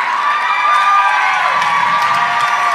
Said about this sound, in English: We like to make people clap until they're standing